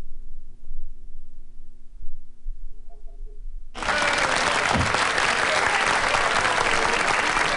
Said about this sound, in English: Thank you very much if you bothered to applaud for me.